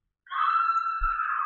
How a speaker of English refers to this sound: Oh, wow, it's a scream.